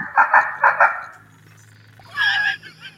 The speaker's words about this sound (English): Sounds like a horror movie. That's Duck Dynasty. That's duck calls.